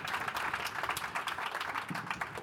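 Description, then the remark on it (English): A crowd applauds steadily, dense overlapping claps forming a continuous, fairly loud wash of sound with no voices, sustained evenly throughout. “So I want to give, let's all give a huge round of applause.”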